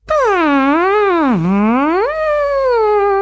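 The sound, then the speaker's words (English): A single voice, bending into a microphone, imitates the song of the southern right whale, a loud continuous moaning tone that swoops down to a low dip and climbs back up, rich in overtones, with no talking. “that was the haunting song of the southern right whale”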